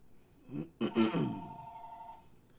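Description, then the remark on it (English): A house telephone rings with a single steady electronic tone lasting about a second, partly overlapping a man's low grunting, sigh-like vocal noises that come just before it. “That's the house phone.”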